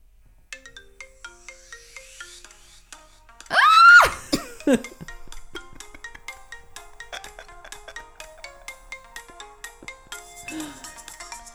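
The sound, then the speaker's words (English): A mobile phone ringtone for an incoming call plays a bright, pop-style electronic melody with repeating tonal notes, interrupted briefly by a loud cough or vocal burst near the start, then continuing steadily. “Ringtones are back. All right, it's going to happen. So she's calling me right now.”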